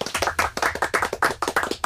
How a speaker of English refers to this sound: We have got a very special guest. Can we have a round of applause for Rugby World Cup referee, Mr. Tom Foley.